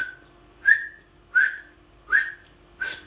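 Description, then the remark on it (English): Air whistled through a LAS hunting game call, shaped like whistling the word 'hot', in four short, breathy notes. Each starts with a puff of air and settles into a steady tone, evenly spaced, with no talking. “And just as you put the call up to your lips, try to whistle the word hot.”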